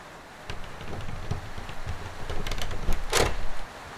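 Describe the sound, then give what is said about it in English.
The handle of a locked door is jiggled and yanked several times, with clicks and dull thumps building to a louder rattling clatter before stopping; no voices. “It won't open! Is it locked?”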